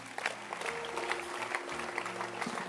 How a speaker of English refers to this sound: Let's clap our hands for them.